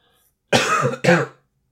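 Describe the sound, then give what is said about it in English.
Two quick, harsh coughs, the first slightly longer than the second, with a throaty, raspy quality and silence on either side, caused by too much pepper in a salad. “That was me coughing up some NSFW.”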